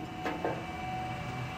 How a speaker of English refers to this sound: In the Elk Hills, 20 miles west of Bakersfield, you see and hear oil pumps everywhere. After all, drilling has been going on here since 1911.